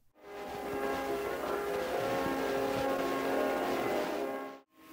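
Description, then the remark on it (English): A helicopter lands at Spreckles Lake in San Francisco in 1961, its rotors whipping the water. It whirs steadily with a loud, continuous droning roar and layered humming engine tones, holding even for about four seconds before cutting off abruptly. “The whirring sound of the helicopter breaks through the air and whips the waters of Spreckles Lake as it lands, bringing to us our very special guests.”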